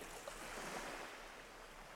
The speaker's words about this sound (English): You see, the ocean was just calm a second ago. Yeah. But it starts rocking. And it starts rocking. And the waves start getting a little bit bigger. And then a giant wave washes over, like, you and the ship and, like, hits the shore.